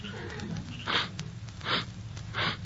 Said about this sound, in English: You crying? No. What are you sniffing for? I was just seeing if I smelt something.